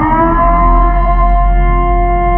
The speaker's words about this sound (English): And what sound would you blast at them? I thought immediately of the Purge siren.